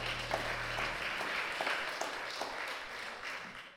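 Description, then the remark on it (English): A seated church audience gives the Lord a hand clap of praise together in a dense, steady wash of applause that holds for several seconds, with a low hum underneath at first, before it trails off quickly at the end. “You can give the Lord a hand clap of praise while you're sitting down.”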